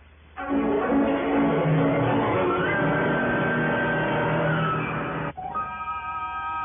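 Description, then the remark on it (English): A car engine abruptly turns over and roars, its droning pitch climbing as it drives off, before the sound cuts to a quieter, steady hum. No one speaks. “Well, you need a car? Here. Here, please, you use mine.”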